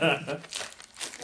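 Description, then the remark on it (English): Red wrapping paper is torn open from a box, a quick run of crisp crinkling and ripping bursts lasting about a second, with a short vocal sound at the very start. “All right, it's whoever's shape this is, square, but it's like it's a box and in red paper.”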